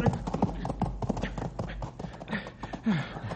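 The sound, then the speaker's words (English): Horse hooves clatter and scramble in quick, irregular bursts, with a few strained vocal sounds mixed in over a low rumbling background, as a horse struggles near the edge of a canyon. “I was sure he was going to pitch us both over the side, stupid horse.”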